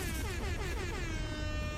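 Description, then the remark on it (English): A loud, sustained air horn sound effect, played from a button on the show Mimosas with Mark, blares without a break, its brassy tone wavering slightly in pitch. No voices are heard alongside it. “The fucking explosion and the damn air horns are as hostile as it could possibly get.”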